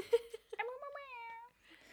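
A cat gives a single drawn-out meow, clear, rising and then sliding down for about a second, with a few short chirpy sounds just before it.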